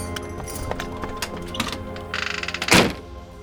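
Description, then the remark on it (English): A heavy warehouse door on the New York waterfront clatters and rattles as a girl pulls it open, ending in one loud thud, with a few softer knocks and creaks before it. “I watched from a distance as the girl opened one of the doors and slipped inside.”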